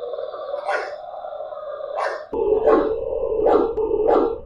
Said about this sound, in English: Wasn't happy, that was for sure. It was this very strange barking noise, like what happens whenever you piss off a dog and they're no longer playing, they're very angry.